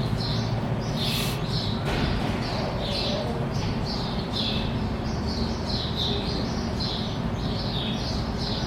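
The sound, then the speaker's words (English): Many birds chirp in quick, repeated bursts throughout, a busy chorus of short high tweets layered over a steady outdoor background hiss, with no one speaking. “A lot of birds.”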